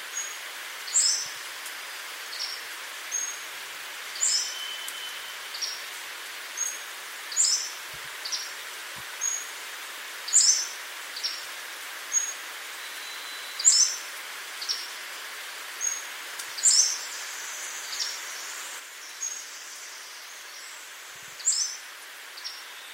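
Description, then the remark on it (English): A Pacific Slope Flycatcher repeats thin, high-pitched song and call notes every second or two against a steady hiss of forest background, clear, with no one talking. “So here is a clip of the Pacific Slope Flycatcher and the other part of its song.”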